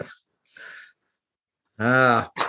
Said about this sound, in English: yawning.